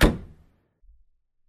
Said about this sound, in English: I opened the door and stepped in.